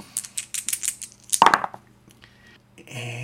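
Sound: dice being rolled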